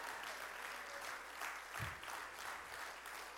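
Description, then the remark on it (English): A crowd claps steadily for a few seconds, a dense, continuous patter of many hands, with no talking over it. “Clap for joy right there.”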